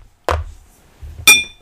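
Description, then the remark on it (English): Two glass clinks about a second apart, glasses touched together in a toast; the second is brighter and rings briefly. Low thumps of handling sit under them, and no one speaks. “This is a wild game of survival. Cheers.”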